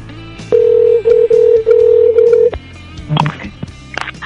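A loud run of electronic telephone dialing tones, several steady beeps strung together with tiny gaps over about two seconds, as a phone call is placed to a caller, followed by a short clatter and faint background noise.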